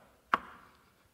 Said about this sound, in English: Ah, there it is. I'm now knocking.